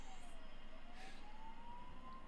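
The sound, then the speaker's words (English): A faint siren wails in a slow, thin tone that dips and then rises again beneath a steady wash of background rumble and noise. “Better turn on the sirens.”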